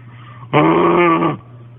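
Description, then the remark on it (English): A very loud, rough animal growl erupts suddenly, holds for nearly a second with a harsh, buzzing tone, then cuts off, leaving a low steady background hum. “And again, the very loud growl you hear will be him.”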